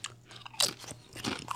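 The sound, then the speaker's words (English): Crisp crunching of a pickle-flavored potato chip being bitten and chewed, a sharp bright crack followed by a few softer crunches, with no talking. “I can definitely taste the pickle in the chip.”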